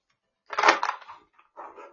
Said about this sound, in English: I apologize if the slapping of the cards is loud.